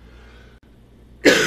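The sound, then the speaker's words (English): A single loud cough bursts out abruptly after a stretch of quiet, harsh and breathy, with no talking around it. “Pardon my cough.”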